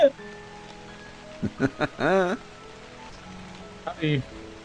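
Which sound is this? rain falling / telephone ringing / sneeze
rain falling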